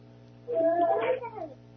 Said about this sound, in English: Callers, if you would be so kind, please press *6 to mute out your phone. I still hear someone with a baby nearby.